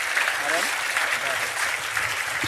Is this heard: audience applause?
yes